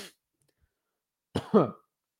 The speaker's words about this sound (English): Got a cough. Jesus. I think I swallowed this water wrong, but whatever.